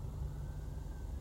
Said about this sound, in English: But I've been thinking, oh, here comes another fire truck. Headed by, it's a ladder truck. Headed behind the other truck that just passed me, which was a pumper truck, I think. And this is a hook and ladder truck.